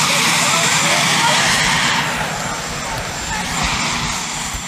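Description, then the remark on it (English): A loud helicopter roar fills the whole stretch, its rotor thumping steadily beneath a broad engine whine, with faint indistinct voices mixed in. “And keep in mind that helicopter noise, because it's going to come into play in a second.”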